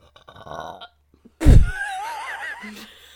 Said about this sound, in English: I just had a burp and it was deep in my belly.